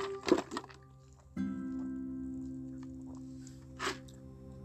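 Ice rattles and clinks in a glass during a sip: a cluster of short, bright rattles at the start, then a steady low hum underneath and one more brief clink near the end.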